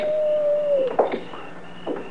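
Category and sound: animal, coyote howling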